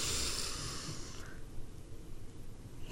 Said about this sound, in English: Okay, so before we get started, let's do our relaxation ritual. We're going to breathe in through the nose and hold it for a few seconds.